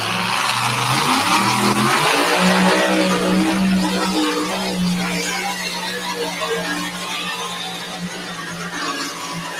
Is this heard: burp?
no